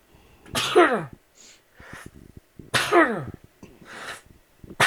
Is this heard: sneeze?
yes